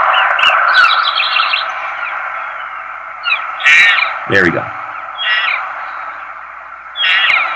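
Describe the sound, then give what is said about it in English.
Short, squeaky calf mews repeat irregularly over a steady hiss, with one louder call sliding sharply downward in pitch. A man speaks briefly. “Calf mew.”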